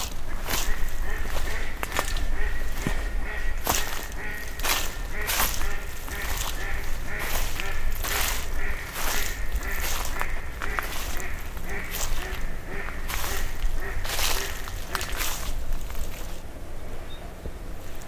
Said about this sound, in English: You can hear a lot of flapping in the water. Might be some fighting going on.